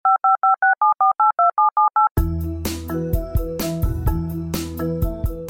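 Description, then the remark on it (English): A quick, evenly spaced run of about eleven touch-tone dialing beeps, each a clean two-note electronic chirp, followed abruptly by loud music. “You call up Bell Canada, and you end up in India.”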